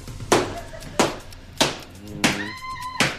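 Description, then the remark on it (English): Five heavy stomping footsteps land in a steady, slow rhythm, each a loud thud, with a faint high tonal whine rising in the background toward the end. “And are you stomping here? I was stomping, yeah.”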